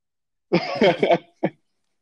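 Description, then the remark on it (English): A quick run of three or four harsh, throaty coughs, followed after a brief pause by one short final cough. “If you want to make it in this town, you better cough into your armpit.”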